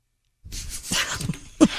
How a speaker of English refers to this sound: Now, what's better, me yawning or him doing that?